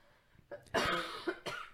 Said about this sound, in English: You could edit out all my coughs.